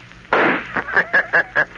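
A loud, sharp gunshot sound effect in a radio drama of The Shadow, fired by Rankin at the Shadow in a cabin, with a brief ringing decay, followed by four or five shorter bursts in a quick, uneven rhythm.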